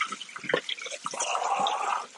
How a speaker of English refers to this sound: Just rinsing these cans out.